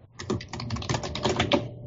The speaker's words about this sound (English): You know, I think I'm a fan of the very loud keyboard because it adds some old-fashioned sound effects to our radio show.